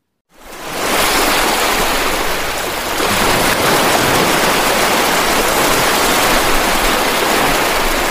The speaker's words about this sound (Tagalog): Nang bigla na lamang silang hinampas ng malaking alon